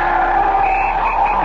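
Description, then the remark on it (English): A loud, sustained screech of car brakes and skidding tires as a car stops for a man crossing a street in slush and snow, a steady high-pitched squeal that holds for about a second and a half without pause, with no voices. “The brakes on that fellow's car hadn't held, you'd have been killed.”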